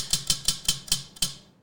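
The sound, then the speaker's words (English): A prize wheel clicks as it spins, about six sharp, bright ticks spaced farther and farther apart as it slows to a stop, with no voices. “Wheel spin, I guess, first.”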